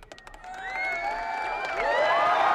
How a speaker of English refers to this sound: This crowd is crazy. A little too loud in some places.